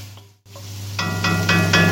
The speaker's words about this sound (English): I'm just going to add a little bit of this pepper, which I've just crushed up. And I'll add a little bit of salt in a second. Oof, that smells good. Now frying the pepper in the mushrooms, it smells amazing.